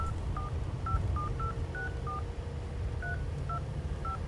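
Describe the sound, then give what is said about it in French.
A phone number is keyed in as a string of about nine short, clear touch-tone beeps, irregularly spaced with a pause midway, over a low steady rumble. No one speaks. “je te laisse, il faut que je fasse un coup de fil.”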